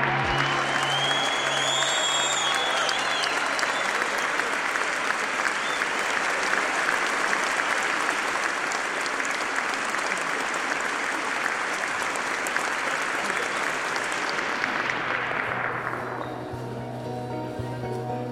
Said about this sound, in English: Thank you. Applause.